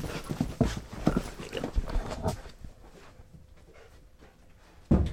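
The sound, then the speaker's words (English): A dog moves around, its paws tapping and scuffling on the floor with some panting, then things settle quieter before a sudden bump near the end. “hey, we got a dog here.”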